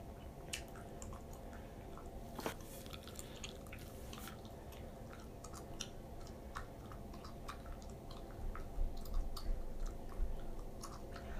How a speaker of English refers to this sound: Sorry, y'all. I'm chewing this gum.